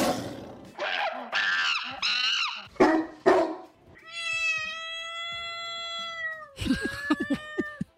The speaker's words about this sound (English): Is that cat okay? That cat, yeah, that cat's going through one right now. Needs some help.